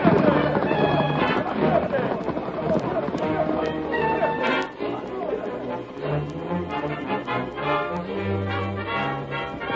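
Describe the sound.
Horses gallop past in a steady, loud rush of hoofbeats, with a high whinny rising early on and excited voices shouting over the commotion.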